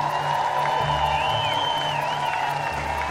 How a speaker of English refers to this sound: Before the ceremony, well wishes accompanied her funeral cortege from in front of her former home in Bray in County Wicklow. Fans applauded and threw flowers.